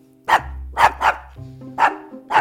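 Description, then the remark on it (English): A dog, Luna, barks five times in an uneven rhythm, loud, with a low steady hum beneath and no talking. “So Luna, on a scale of 1 to 5, how many doggy treats do you give this story?”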